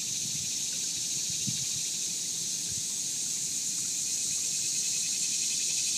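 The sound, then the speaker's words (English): A steady, continuous high-pitched drone of crickets or similar insects chirping by scratching their legs, unbroken for the whole stretch, with a faint low rustle and murmur of a quiet river flowing over small rocks underneath. “you could clearly hear each cricket or whatever kind of scratching, leg scratching insect distinctly.”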